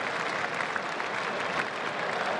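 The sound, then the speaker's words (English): A cricket crowd applauds steadily as batter Brook reaches a small milestone with the score at 3 for 152, a dense patter of many hands clapping at an even level for a couple of seconds, with no voices on top. “Another little milestone checked off, and the crowd acknowledge it accordingly.”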